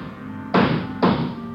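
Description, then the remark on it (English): Two heavy, dull thuds about half a second apart as a man drops down a ladder rung by rung in a warehouse, fairly loud over a steady low background hum. No one speaks. “Joe, he's dropping down the ladder.”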